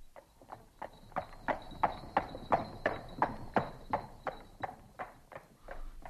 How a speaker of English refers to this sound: As the horse pulled away, you could see all the people of the street return slowly to their work.